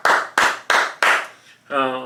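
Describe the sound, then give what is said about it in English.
Four loud hand claps in a steady, even rhythm, each with a short ringing tail, applauding the Golden State Warriors' NBA title win, followed by a voice starting to speak. “You know, clap it up for them.”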